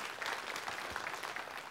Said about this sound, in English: Come on, let's give the Lord a hand clap for that.